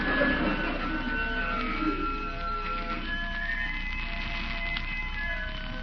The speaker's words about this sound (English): Here comes the organ grinder and the monkey.